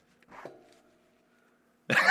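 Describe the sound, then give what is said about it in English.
A single short, throaty burp with a low voiced tone that fades out, followed by a pause and then a sudden louder, rough burst of noise at the end. “I was burping. That's why I made that face.”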